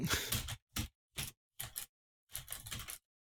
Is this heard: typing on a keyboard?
yes